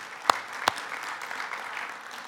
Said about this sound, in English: Can you give everybody a great applause for all they're doing?